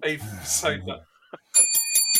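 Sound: bell ringing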